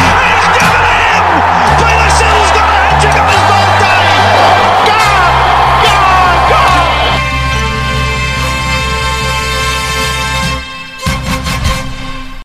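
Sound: crowd cheering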